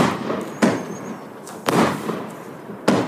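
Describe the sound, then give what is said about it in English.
A 49-shot firework cake bursting in the open: three sharp booms roughly a second apart, each trailing off into a dense crackling hiss, with no voices. “As far as you know, as far as fireworks go, this one's got it all.”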